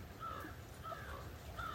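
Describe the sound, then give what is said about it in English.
A raven caws three times at a steady, evenly spaced pace, the harsh calls sounding over a low background rumble with no one speaking. “Raven's in now.”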